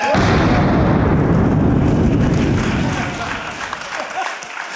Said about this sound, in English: Give him another cannon, please.